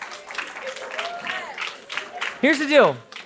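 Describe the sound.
An audience at a middle school ministry gathering claps steadily for a few seconds, a dense patter of many hands. Near the end a voice calls out loudly over the applause with a rising and falling shout.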